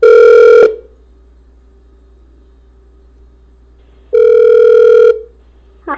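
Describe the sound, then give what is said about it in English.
Two loud, steady electronic ringback tones, each lasting about a second with a long silent gap between, from an outgoing phone call placed to call someone back after technical difficulties; a faint voice starts at the end. “That's this ringing. Hear that?”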